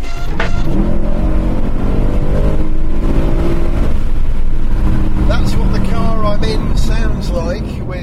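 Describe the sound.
A powerful Mercedes C63 AMG Coupe Black Series engine drones loudly, heard with the car closed, its pitch climbing as it revs, while a voice talks over the steady roar in the later seconds.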